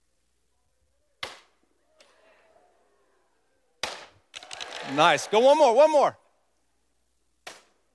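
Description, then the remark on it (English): A candy-filled piñata on a stage during a sermon takes three sharp, loud whacks spaced several seconds apart, with excited voices calling out and cheering between the second and third blows. “I think about the fact that piñatas were made to be destroyed, yes?”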